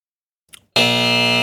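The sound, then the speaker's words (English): A brief soft rustle, then a loud, harsh electronic buzzer kicks in abruptly and holds a steady, rich tone to the end, like a quiz show buzz-in. “I'm buzzing in.”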